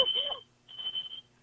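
A fire alarm sounds in two steady, high-pitched electronic bursts with a short gap between them, going off in a home during a 911 call reporting a break-in. The tone is moderately loud, and a faint voice briefly overlaps the first burst.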